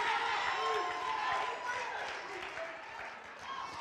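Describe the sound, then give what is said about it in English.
An audience of women screaming and cheering, shrill voices rising over a dense, steady roar of crowd noise that holds loud for nearly four seconds before easing slightly. “Do you hear the screams of those women?”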